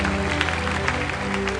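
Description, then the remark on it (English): An audience claps together during worship in a steady, dense wash of hand claps, with sustained low musical tones holding underneath throughout. “Clap your hands for him.”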